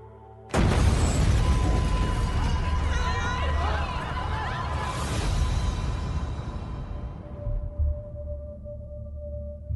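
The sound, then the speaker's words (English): A sudden, loud explosion bursts in with a heavy low boom, followed by a long rumbling roar and crackling debris that slowly fades over several seconds. “There was an explosion, and your legs, they're gone, bro.”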